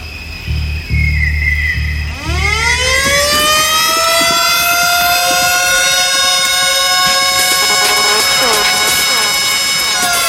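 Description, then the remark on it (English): A loud mechanical siren winds up from a low growl into a steady, piercing wail that holds for several seconds, following a brief rumbling engine-like pulsing at the start. “Stop it with your siren, man! Stop it with your siren!”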